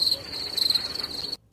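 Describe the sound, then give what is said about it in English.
A cricket sound effect chirps in a high, steady trill that stutters unevenly, then abruptly cuts out for a moment before resuming; no voices. “All right, that's a terrible cricket sound effect. Hey, it was. It was like a stuttering cricket.”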